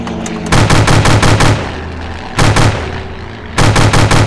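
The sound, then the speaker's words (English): Three bursts of rapid machine-gun fire from the gun of an old plane, fired at a pursuing plane on its tail, a longer rattling volley followed by two shorter ones, loud and sharp over a steady droning engine hum with no voices. “Now grab that gun and keep whoever it is off my tail!”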